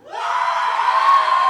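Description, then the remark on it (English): A live audience bursts into loud, sustained cheering and whooping to vote for an option, rising quickly and holding steady at full volume for the whole moment with no one speaking. “All right, if you want cake farts, cheer.”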